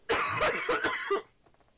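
coughing fit

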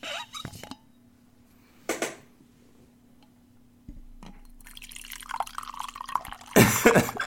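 coffee poured

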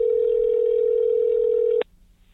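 telephone dial tone

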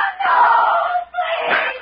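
woman screaming

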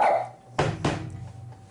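small dog barking

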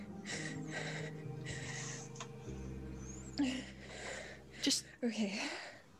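person gasping

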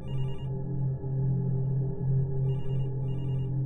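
telephone ringing

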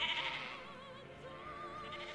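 sheep bleating

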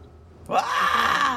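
wilhelm scream sound effect

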